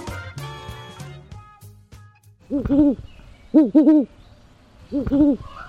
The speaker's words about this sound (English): We leave you this week with a couple of great horned owls. The great horned owl is the most common owl in the Americas, equally at home in suburbs, the woods, and farmland.